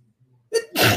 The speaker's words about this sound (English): So there is hold on, I gotta sneeze.